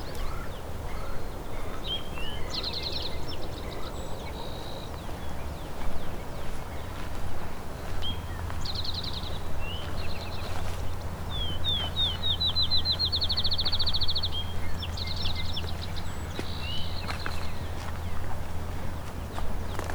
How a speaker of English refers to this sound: Field sparrow.